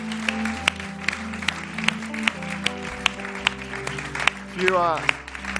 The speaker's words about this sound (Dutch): Come on, why don't we give all these guys a hand right now. Laten we hun een applaus geven. Awesome church.